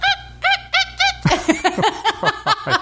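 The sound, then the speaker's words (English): A human voice imitates dolphin chatter: four high, arching squeals at a steady pace, then a quicker run of about nine chirpy, clicking squeaks, fairly loud with no talking. “All right, that was my dolphin noise, but obviously is that what that was?”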